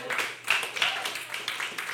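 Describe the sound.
An audience claps together in a steady, dense burst of applause lasting a couple of seconds, with scattered voices calling out over the clapping.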